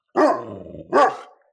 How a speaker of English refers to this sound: Does my dog make too much noise in the background?